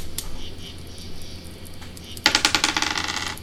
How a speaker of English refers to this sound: Roll another d6.